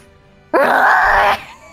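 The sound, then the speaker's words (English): A person's voice imitates the deep roar of a big bear intimidating a mountain lion: one loud, sustained, raspy growl lasting under a second, starting abruptly and cutting off, with no talking around it. “It's got to be a much deeper roar too, because this is a big bear.”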